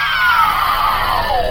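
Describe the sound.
A monster-like spider, shot with a bullet of blood, shrieks as it dissolves in a giant puff of dust: one continuous harsh, loud cry whose pitch slides steadily downward over about a second and a half, with no speech.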